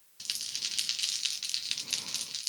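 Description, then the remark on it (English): A handful of six-sided dice (D6s) clatters and rattles for a couple of seconds, a busy stream of bright, sharp clicks with no one speaking. “Ooh, it's a lot of dice.”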